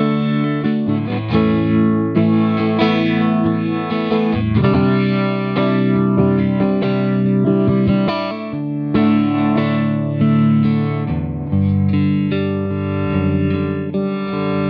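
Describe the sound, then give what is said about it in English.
Electric guitar played through a pulsing effects pedal while the pedal's tone control is adjusted, sustained mildly overdriven chords throbbing rhythmically at a steady, fairly loud level for the whole stretch, with no one talking. “So it's kind of making the pulse of the sound brighter or kind of warmer or duller, yes.”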